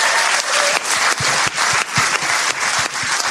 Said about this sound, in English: That was a round of applause for that.